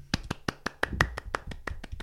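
A dozen or so quick, slightly uneven hand claps, fairly loud, with an awkward, clumsy rhythm and a faint clicking edge to each hit, made by a person clapping while holding a pencil in one hand.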